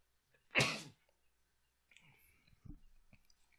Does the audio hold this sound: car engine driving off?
no